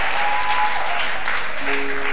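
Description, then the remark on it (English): A crowd at a gathering in Jos claps steadily after the announced birth of a baby boy, a dense wash of many hands applauding together at a loud, even level with no voices over it. “May men clap for you the way you are clapping now.”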